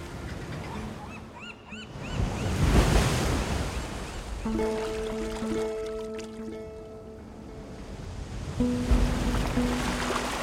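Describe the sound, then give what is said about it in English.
Ocean waves wash onto the shore in slow, rolling surges, swelling loud and then receding, while a series of honking bird calls rings out over the surf midway through. “The sea is calm tonight, off Dover Beach.”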